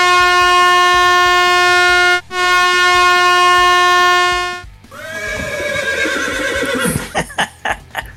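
Two loud, sustained air horn blasts, the first about two seconds long and the second longer, are followed by a horse's whinny and a few hoof clops. No one speaks.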